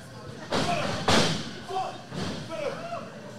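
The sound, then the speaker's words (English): In a wrestling ring, Brian Idol smashes the champion's head onto a chair: two loud thuds about half a second apart, the second heavier, with crowd noise and voices continuing afterward. “And the champion gets his head smashed onto a chair by Brian Idol.”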